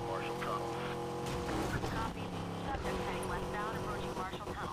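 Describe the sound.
A video game car engine revs in a loud, steady drone, its pitch stepping up and down, with indistinct voices mixed in over the whole stretch; the car is stuck in fourth gear.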